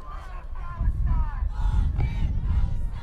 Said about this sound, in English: There's a great crowd on the finish line. These guys come into a lot of cheers, a lot of noise, a lot of applause, and it doesn't happen in every road race. It's fairly unique to Manchester of a race of this distance, isn't it,